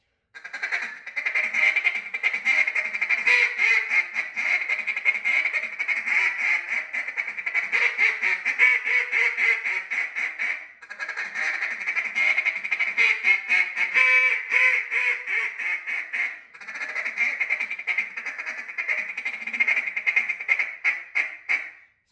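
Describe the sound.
A duck call blown in a rapid, continuous feed-call chatter, loud, running in three long bursts with brief pauses between them and no voices.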